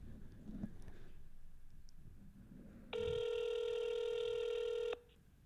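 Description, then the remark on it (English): A phone rings on an outgoing call placed over the comms: one loud, steady ringback tone lasting about two seconds, preceded by a quiet stretch of low background rumble. “I always think of Crank Anchors every time I hear the phone ringing like that.”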